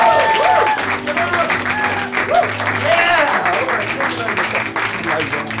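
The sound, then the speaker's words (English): An audience at the Leicester Square Theatre bursts into sustained applause welcoming a storyteller, a dense, steady roar of clapping lasting several seconds, with cheers and voices mixed into it. “There we go, now applaud, it's my team.”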